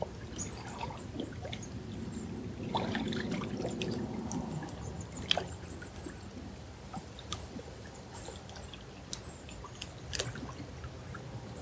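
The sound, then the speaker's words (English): Water trickles and gurgles steadily at moderate volume, with scattered small drips and splashes, a brief louder rush partway through, and faint birds chirping in the background. “The sound current of the water be yours.”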